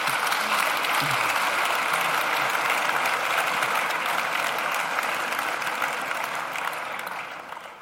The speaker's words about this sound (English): And that's Jancis Robinson. I think they deserve a round of applause just to get us going.